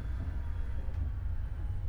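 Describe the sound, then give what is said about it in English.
A steady, continuous low rumble fills a moving train car rolling over rails, with a faint high whine running through it and no voices. “Never been to this part of the train before.”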